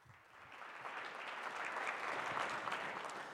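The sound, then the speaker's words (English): An audience at a dermatology talk applauds steadily as a speaker is introduced. The dense clapping swells slightly and holds at a moderate level throughout, with no voices over it. “Please give him your attention and a round of applause.”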